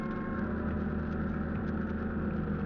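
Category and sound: vehicle, boat engines running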